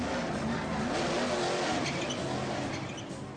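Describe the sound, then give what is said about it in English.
A race car engine roars loudly and continuously, with high tire squeals and skidding cutting through over a few seconds of dense motor noise. “A race car driver, maybe.”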